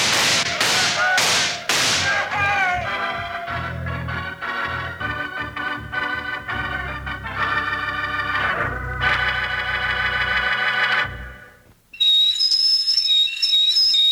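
signal or alarm, whistle blowing

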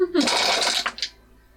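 percentile dice being rolled

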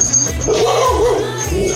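animal, dogs barking

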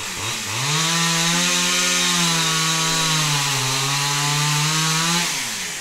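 sound effect, chainsaw revving sound effect

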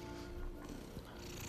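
animal, cats purring

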